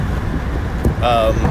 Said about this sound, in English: Here we are back on the open road here. I'm heading up to the new apartment again. This is my, I think, third trip.